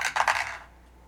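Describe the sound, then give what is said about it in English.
A die is rolled: it clatters and tumbles across a surface in a few quick bright clicks, then settles into quiet within half a second. “It is time to roll the die for our listeners and see what their shuffle is.”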